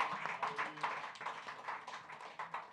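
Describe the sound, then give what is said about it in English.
A church audience claps together as a clap offering to Jesus, many hands producing a dense, crackling stream of overlapping claps that holds steady at a moderate level for the whole stretch, with no voices over it. “If you rigged everything towards you, say hallelujah and give a clap offering to Jesus.”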